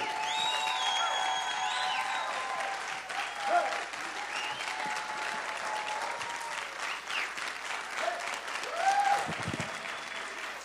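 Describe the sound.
Steady audience applause fills the whole stretch, a dense wash of many hands clapping with a few faint whistles and voices rising through it, holding at a constant loud level.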